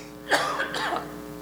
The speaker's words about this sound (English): I didn't cough a lick at all until I stepped on this platform. It's the weirdest thing. Didn't cough while I was singing. None of that. But it ain't going to shut me up.